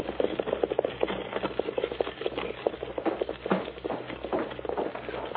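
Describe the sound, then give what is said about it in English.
Rapid, drumming hoofbeats of horses galloping off pulling a wagon after its brake is taken off, over a steady rumble of rolling wagon wheels, continuous and fairly loud throughout, with no one speaking. “Now, Parsons, take off that brake and start heading for the hills. Get up, horses. I'll be right behind you.”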